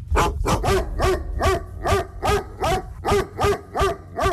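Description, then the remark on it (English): A dog barks loudly and repeatedly, around ten sharp barks in a steady, quick rhythm, with no voices. “Later in the news, we'll take you to the eastern region town of Anum and tell you the story behind the prohibition of keeping dogs by residents.”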